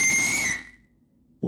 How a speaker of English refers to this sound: That was a bad whistle, by the way.